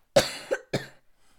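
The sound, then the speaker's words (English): A person coughs twice in quick succession, fairly loud, with a short harsh burst followed by a second rougher cough, then quiet. “Despite my coughing, their allergies leave me alone.”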